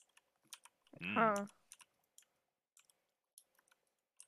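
Light, irregular clicks of computer keyboard keys tapping at a steady, quiet level throughout, heard over a Discord voice call, with a short burst of a voice briefly rising over them early on.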